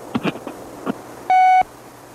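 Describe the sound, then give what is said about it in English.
A few soft, brief clicks and taps lead into a single loud, steady electronic beep lasting about a third of a second — the tone signalling a voicemail is ready to record. “Record your message after the tone.”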